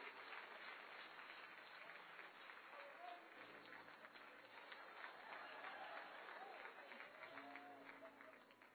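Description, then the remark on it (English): A room full of people applauds steadily for several seconds, giving a hand clap to God, a dense, continuous patter of hand claps with some murmuring voices underneath, even in loudness throughout. “Let's give Him a hand clap for being willing to be so generous today.”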